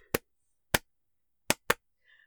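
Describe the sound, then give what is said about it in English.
Four sharp, loose hand claps made with flailing hands, fingers and palms striking together, in an uneven rhythm, with a long gap after the first two and the last two landing close together, each a crisp slap with no talking. “Hold on, let me try flail hands.”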